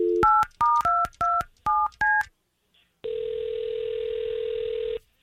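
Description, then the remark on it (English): A quick run of about seven telephone keypad tones, each a short two-note beep, as a woman's phone number is dialed to call her, followed by a pause and then a steady, sustained ringback or line tone lasting about two seconds. “We're going to try to call her and see if we can't find out what happened, okay?”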